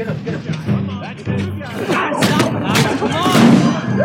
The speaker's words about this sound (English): I'm sure we've got to get some punching sounds spliced into here so people can really hear how awful this movie was.